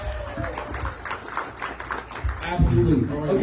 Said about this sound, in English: Well, guys, give a round of applause for our...